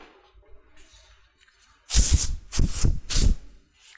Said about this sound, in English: That's why I carry around commercial grade disinfectant and just spray myself at regular intervals.